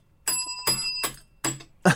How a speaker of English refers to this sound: The bell ain't working too well tonight